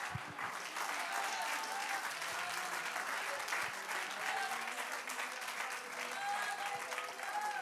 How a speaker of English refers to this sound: If that is you, stand to your feet, clap your hands unto the Lord. Let's lift up the name of Jesus.